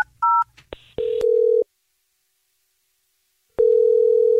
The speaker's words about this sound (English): Okay. Here we go. I'm going to dial this phone number right now.